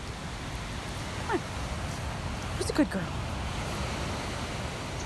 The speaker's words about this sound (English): I live by a river, I live on a river, so you can hear that in the background too.